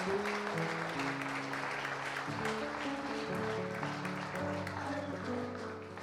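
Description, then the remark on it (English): A crowd claps steadily and loudly throughout for people who were just baptized, a dense wash of applause layered over sustained keyboard chords that shift pitch every second or two, fading slightly at the end. “Give a round of applause to those who were baptized.”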